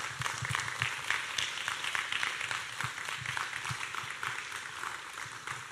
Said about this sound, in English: She's coming from the sound booth, so it's way back there. So go ahead and keep clapping. She wanted to have a long applause as she came up